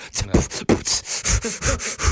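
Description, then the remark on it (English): A person breathes heavily in quick, rhythmic huffs, about eight loud breathy gasps in a row, some with a slight voiced edge, with no talking. “I was just me breathing really heavy.”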